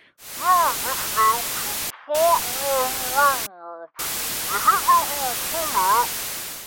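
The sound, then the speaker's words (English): Dense static hisses loudly from a radio set to a station, with a muffled, barely intelligible DJ voice buried underneath; the signal cuts out twice, and a brief steady electronic tone sounds during one dropout. “It is set to a station, but with a mass of static coming out.”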